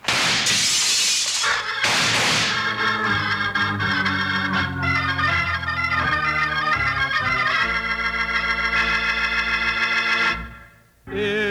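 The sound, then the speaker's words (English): A lamp is knocked out, its glass shattering in a loud, bright crash, with a second burst of breaking glass moments later, then sustained dramatic music swells in and plays until an abrupt cutoff. “Hey, quick, knock out the lamp.”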